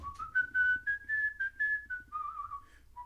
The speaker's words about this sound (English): And when you're listening to me, I want you to think of this song. I'll just whistle it.